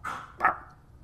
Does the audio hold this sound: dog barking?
yes